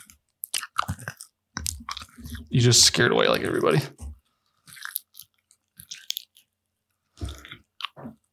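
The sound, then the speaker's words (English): Loud, crunchy chewing right up against the microphone, with wet bites and crunches in bursts between short bits of talking. “Here, stop chewing in the microphone.”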